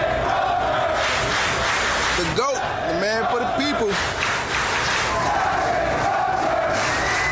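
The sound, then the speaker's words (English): A large crowd of sailors cheers and roars continuously, like stadium fans, with a few voices rising above the din in chant-like shouts through the middle, as their fired captain takes his bags and walks off the aircraft carrier he commanded. “If you were not watching this and you were only listening to the audio, you would swear to God that you were listening to a Premier League match and it's a bunch of soccer hooligans rooting on their favorite player of all time walking off the pitch”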